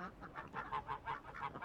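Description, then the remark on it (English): Geese cackle in a rapid, repeated series of nasal honks, about eight calls in quick rhythm, moderately loud with no voices present. “was so averse to any elevation of his status that upon hearing he was to be appointed bishop, hid himself away in a goose pen until the bird's cackling betrayed his location.”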